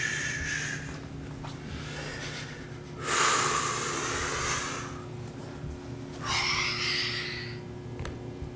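Yoga breathing exercises by a 59-year-old man in an office: long, forceful breaths with a rushing, hissing quality, two loud drawn-out ones following a fainter earlier breath, over a steady low hum with no talking.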